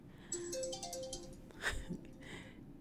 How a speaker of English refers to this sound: And I have alarms going off right now.